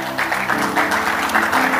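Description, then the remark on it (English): A church audience claps steadily and densely as a clap offering to God, a continuous wash of many hands, over a sustained musical tone in the background. “Give God a clap offering.”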